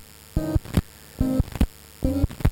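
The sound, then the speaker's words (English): A steady electrical hum and hiss from a radio, broken by three evenly spaced buzzy tonal bursts with sharp clicks as the dial is turned. No one speaks. “That's a good ratchet on the obnoxious channel. Da-da-da-da-da on the static.”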